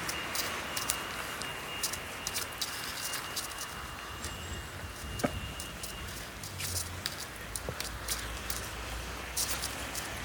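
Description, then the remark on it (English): Street ambience recorded while walking along a main road to a bus stop: a continuous wash of traffic rumble and hiss, scattered clicks and taps, and a faint steady high whine, with no one speaking. “I'm going to give you some ambient noise for a bit while I walk along the main road to the bus stop.”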